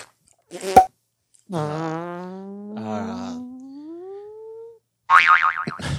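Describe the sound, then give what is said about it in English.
A long, wobbling fart-like noise, made by mouth to mimic a pogo stick, rises slowly in pitch like a springy boing, followed by a short buzzy burst; a brief click comes at the start, with no talking. “You left your pogo stick in here. Let me fart it out real quick.”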